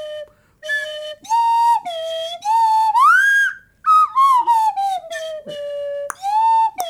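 A slide whistle plays a string of loud toots, its pitch swooping up and down between short breaks, with one long rising glide in the middle. No one speaks.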